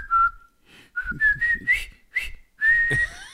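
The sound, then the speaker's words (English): A short whistled camp call: several bright, steady notes in a quick rising-and-falling pattern, ending on a longer held note, fairly loud with no talking. “It's that camp whistle thing that.”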